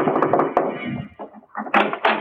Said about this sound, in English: One night I saw a big house shining in the moonlight. I decided to take a chance. I knocked at the door.